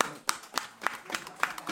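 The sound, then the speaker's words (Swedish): Hands clap at a steady, even pace, about six sharp claps in under two seconds, apparently from one or two people rather than a crowd, moderately quiet. “En applåd för er.”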